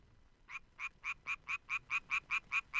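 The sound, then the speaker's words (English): A male frog not infected with the pathogenic BD fungus gives its mating call: a steady train of about ten short, evenly spaced croaking pulses, each a little louder than the last, with no talking. “Here are the frogs without the fungus. Their mating calls.”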